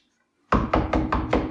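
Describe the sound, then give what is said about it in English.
Five firm knocks on a door in a quick, steady rhythm, fairly loud after a moment of silence, with no voices. “That was only four knocks.”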